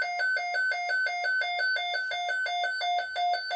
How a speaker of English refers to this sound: Well, I don't know if you folks just heard that alarm go off. It kind of shocked us a little bit. But we took a break, got up and checked the weather radio that just went off with an alarm, and it is giving us a tornado watch.